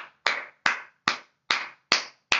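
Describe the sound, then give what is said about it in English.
Six sharp hand claps in a slow, steady rhythm, each a bright crack with a short decaying tail, spaced roughly 0.4 seconds apart with silence between them and no talking. “It's a motherfucking hand clap.”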